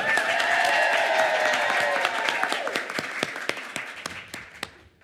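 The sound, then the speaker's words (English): Audience applause at Book Bonanza in Dallas, Texas: a dense burst of many hands clapping with a few cheers, loud at first, then thinning into scattered individual claps as it fades out over about five seconds. “I think the cue audience to applaud part of the script went off quite well.”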